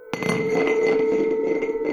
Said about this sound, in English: And they stopped, and I went back to bed, and then I heard a water glass rolling down the hall.